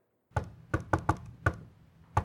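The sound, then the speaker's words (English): A rapping knock on a door: six sharp, solid knocks in an uneven rhythm, with a quick cluster in the middle and a final knock after a pause, fairly loud with no talking. “That's a rap on the door.”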